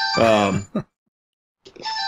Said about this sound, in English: somebody's ringing my phone in the back, by the way, there's nothing I can do about that.